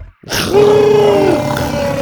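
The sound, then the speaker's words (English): A single loud roar from Buck the T-Rex after eating a giant spider bursts in after a brief silence, a growling bellow that shifts upward in pitch and holds for nearly two seconds. “The T-Rex roared triumphantly.”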